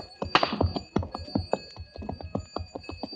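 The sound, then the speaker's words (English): Irregular clanking knocks of camel bells over a steady high ringing tone, the hollow strikes coming unevenly and easing slightly in loudness as the bells fade away into the distance. “As I stood and listened to the camel bells fade away in the distance”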